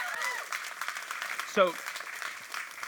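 Steady audience applause following a video, a dense patter of many hands clapping throughout at a moderate level, with a brief cheer briefly rising above it about halfway through.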